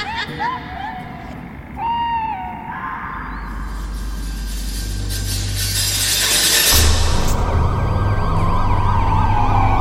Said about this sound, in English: Ambulance all around me. Paramedics lift me up on some mad stretcher thing.